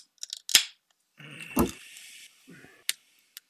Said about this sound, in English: I got scissors and littler scissors.